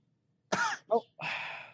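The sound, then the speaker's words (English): A harsh cough right up against the microphone, followed by a short throaty hack and another rough, drawn-out cough, loud and close with no talking. “Stop coughing one to the mic”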